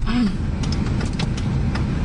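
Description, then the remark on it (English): A car engine rumbles steadily, with a brief falling whine at the start and a few sharp clicks and knocks scattered through, like a motor stalling and sputtering as it struggles to restart. “your car is broken.”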